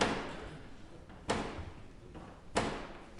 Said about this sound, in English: And so the Black Rod itself is actually a staff. And it's a sort of ebony staff topped with like a golden lion. And so it basically, Black Rod bangs on the door with the staff. So the Usher of Black Rod bangs on the door with Black Rod, the staff.